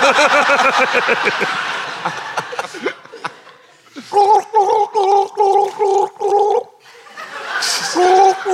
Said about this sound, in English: Why can none of you... Can white people not gargle?